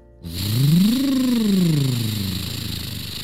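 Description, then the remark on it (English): A single monster truck engine rev that climbs quickly in pitch, peaks, then slowly winds back down, loud, with a steady hiss underneath and no talking. “The monster truck was able to drive right over the lava.”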